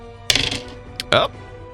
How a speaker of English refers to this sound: Oh. Quite a few dice. It's a lot of D10s.